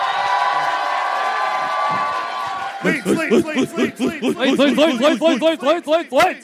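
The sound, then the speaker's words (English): A live audience in Leeds cheers for its own city in a loud, dense roar for about three seconds. Then it breaks into a run of rhythmic, repeated vocal bursts, like whooping or chanting, that stay loud to the end. “Usually people don't cheer their own city.”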